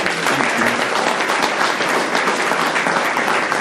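A room full of people claps steadily, a dense, sustained wash of applause at close range that holds at an even level throughout, with no voices standing out.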